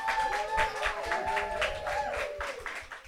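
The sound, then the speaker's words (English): An audience applauds steadily for the panelists being introduced at an evening panel discussion, dense clapping carrying on throughout with some whooping and cheering voices mixed in. “So I want a robust round of applause for everybody that you can.”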